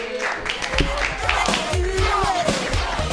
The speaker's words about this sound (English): Clap your hands together, everybody.